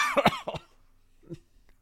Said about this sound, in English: I just coughed into a microphone.